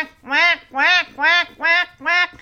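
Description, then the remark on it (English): A person imitates a duck, letting out five loud, nasal quacks in a steady rhythm, each about a third of a second long. “Quack, quack.”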